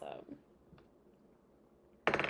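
A glass twenty-sided die is rolled, clattering briefly with a quick burst of bright clicks, then a couple of faint taps as it settles, landing on a nine. A short quiet stretch follows before a loud voice cuts in.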